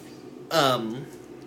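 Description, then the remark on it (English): A single sudden sneeze bursts out, a sharp, breathy blast that trails off into a short voiced tail before it goes quiet again. “Bless you.”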